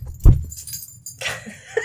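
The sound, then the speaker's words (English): A restless dog locked in a room, going stir crazy: a dull thump, then a stretch of metallic jingling and scuffling, with no one speaking. “Sorry, we have a dog locked in here, so he's going a bit stir crazy.”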